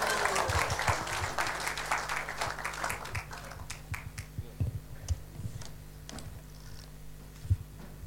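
A burst of audience applause, dense and loud at first, then thinning into scattered individual claps that fade out over several seconds.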